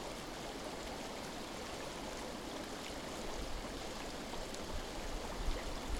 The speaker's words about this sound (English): It's remarkable, isn't it? The constant flow of the water.